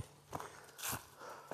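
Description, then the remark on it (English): Heavy breathing while hiking up the steepest section of a hill: a rough, breathy exhale sits between a few crunching footsteps, all fairly quiet, with no talking. “You're gonna hear some heavy breathing here because I'm hiking up the steepest section of hill on the way back from walking the girls to school.”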